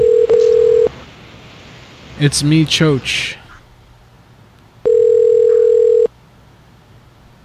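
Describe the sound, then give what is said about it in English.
A telephone call's ringing tone sounds twice as steady, buzzy mid-pitched pulses about a second long, with a man briefly speaking in the quiet gap between them, before the call is answered by a guest voicemail system. “Your call is being answered by the guest voicemail system.”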